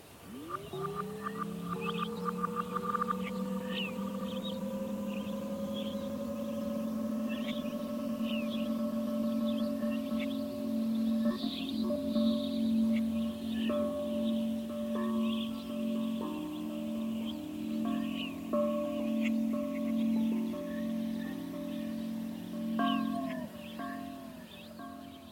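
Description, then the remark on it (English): A wind chime sample with sustained, ringing tones swoops upward in pitch at the start, then holds as a shimmering drone while scattered bright tinkles sparkle above, with a few more small pitch bends near the end. “So there's a part that has a wind chime sample that bends.”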